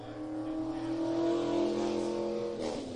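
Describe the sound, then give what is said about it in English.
The engine of a late model race car, number 60, drones loudly and steadily on track during qualifying, revving with a shift in pitch near the end, heard alone without any talking. “And next out on track, one of the guys who had a long haul down from Kitimat, BC, in car number 60's regular out at Terrace Speedway.”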